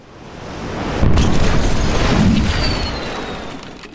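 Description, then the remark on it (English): A loud explosion sound effect bursts in about a second in, a deep rumbling boom with crackling debris that slowly rolls and fades over the next few seconds. “Well, folks, you heard the explosion,”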